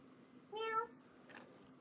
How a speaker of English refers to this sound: This is Stanley. He's a difficult animal, though. He's another cat.